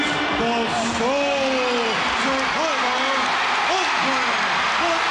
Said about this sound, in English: They're not cheering Andre. They're cheering that man.